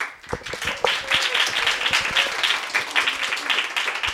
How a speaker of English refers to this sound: So please give a warm applause for Philippine.